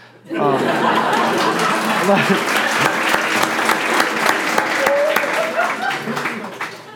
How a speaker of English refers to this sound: So this is where you should clap.